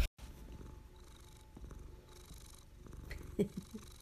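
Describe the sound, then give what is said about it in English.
A male cat named Stuff purrs steadily in a low, rumbling rhythm, recorded on a phone, with soft rustling and a few brief louder bumps toward the end. No one speaks. “Yes, that's stuff burring.”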